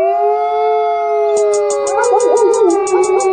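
Several wolves howl together in long, sustained, overlapping tones that begin to waver and rise midway, while a rapid train of high-pitched pulses joins in partway through.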